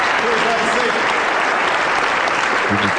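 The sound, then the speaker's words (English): Steady, dense applause from a large audience after the introduction of President Barack Obama, loud and sustained for the whole stretch, with faint voices mixed into the crowd noise and no clear break. “I could have cut the applause out, but I felt it was important to set the stage.”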